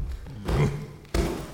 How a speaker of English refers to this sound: What are you doing? You're stomping my garden. Stop stomping.